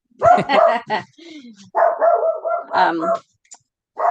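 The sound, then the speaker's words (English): A female dog barks repeatedly at an airplane passing overhead, in a run of sharp, loud yips and drawn-out, howling barks, with brief pauses between bursts. “An airplane went overhead. Yeah. Flight plane. Yeah. And she's barking at it.”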